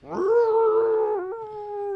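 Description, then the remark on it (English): A person imitates a dog's howl with one loud, drawn-out tone that holds steady for about two seconds, then drops slightly in pitch near the end. No talking is heard. “Jumps on the guy's, right face. On the guy's chest and is like, lets out jaws a howl right here and he's right like, in his face.”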